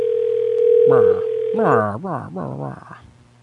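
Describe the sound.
A steady, mid-pitched telephone dial tone hums for nearly two seconds as a call is placed to a horse stable, then cuts out as a person starts talking in a lively, sing-song voice.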